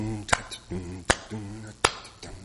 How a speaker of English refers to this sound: However, you notice that African Americans, for example, will tend to clap on the 2 and 4.